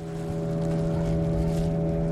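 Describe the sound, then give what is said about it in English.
A boat loaded with about a dozen large sacks of jagua fruit motors upstream on a river: the motor drones steadily with a constant engine hum and harmonic whine, with water and wind rushing underneath, continuous throughout. “The men load about a dozen large sacks of jagua onto a boat and head upstream.”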